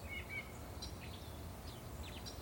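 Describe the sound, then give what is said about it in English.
Several birds chirp softly at a bog, with short, high tweets and quick sweeping calls scattered across a few seconds over a low, steady outdoor rumble. “Let's think about all the birds chirping.”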